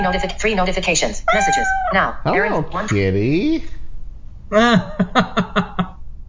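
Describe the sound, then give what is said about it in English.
A cat meows several times, drawn-out, loud cries with rising and falling pitch, followed by a few seconds of a person talking. “Hello, kitty.”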